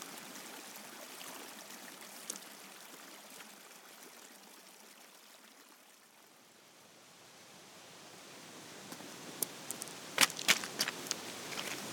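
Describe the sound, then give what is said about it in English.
A waterfall cascading brilliant white down a mountain beck near the Greenburn copper mines, as the sun comes out, roars in a steady, full rush, dipping slightly midway before swelling louder again, with a few sharp splashes and clicks near the end. No voices are heard. “Come a further 50 yards up, arrived upon this impressive and beautiful waterfall, which is cascading down brilliant white, snowy white water, and adjacent to it is a great outcrop on the north side of it.”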